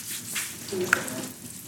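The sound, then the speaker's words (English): Steady crackling sizzle of food frying in hot Crisco shortening, a continuous hiss with small pops and one brief bright click partway through, faint background voices underneath. “So we'll just take our time boiling these and stretch conversation.”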